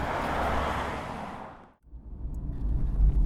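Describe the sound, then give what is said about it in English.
Broad hissing noise fades to a brief near-silent lull, then a steady low engine rumble from inside a car builds and holds, moderately loud, with no one speaking. “So here we are in a car, which may say something about how the rest of that last hour went.”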